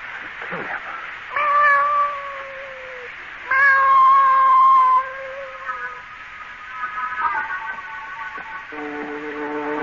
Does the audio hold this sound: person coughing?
no